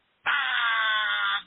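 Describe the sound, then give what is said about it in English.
A person's voice makes a loud, flat, sustained buzzer sound, holding one harsh nasal tone steadily for over a second before cutting off abruptly. “I have to give you a manual buzzer for that because that was just garbage.”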